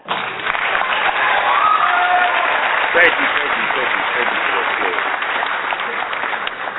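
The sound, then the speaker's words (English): Sustained audience applause welcoming a guest onto a program lasts several seconds, a dense steady clatter of many hands clapping with faint cheers mixed in, holding loud throughout before tapering slightly at the end. “Thank you for the applause.”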